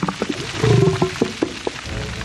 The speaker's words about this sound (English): Us humans are still learning what these whale sounds mean, but what we do know is gray whales make a lot of sound. It's their primary sense, and some of those sounds might not be polite for a dinner party.